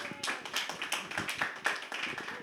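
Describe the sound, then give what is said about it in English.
A crowd claps steadily, many overlapping hand claps forming a dense, crackling patter that holds at a fairly even loudness for a couple of seconds. “Why are you guys clapping?”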